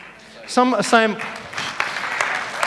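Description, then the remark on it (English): A brief, loud voiced call rings out in two bursts, followed by a steady wash of audience clapping with scattered sharper claps, moderately loud and continuing to the end. “Some are saying, that's all the people who are already in groups clapping.”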